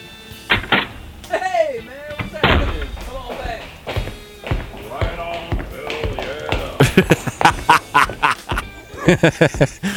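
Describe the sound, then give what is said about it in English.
Quick, hard-soled footsteps run across carpet, a rapid series of dull thuds that grows denser toward the end, following earlier squawky vocal sounds. “Well, I don't know why you wear those shoes.”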